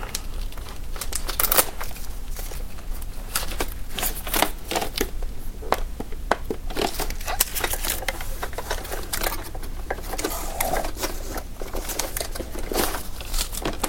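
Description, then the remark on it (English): Steady crinkling and rustling of plastic and cardboard packaging, with sharp crackles and scrapes as a plastic piece and a piece of cardboard are pulled out of a Roomba robot vacuum, no voices. “There's one of those that says, or one of those things where you pull the plastic piece of paper out.”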